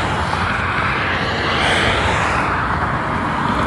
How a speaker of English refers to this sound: These cars are rude.